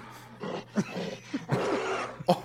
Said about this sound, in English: Oh. Gorilla roar.